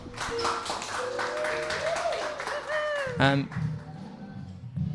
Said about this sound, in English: All right, well, I think we should finish now. Can we have a last round of applause, please?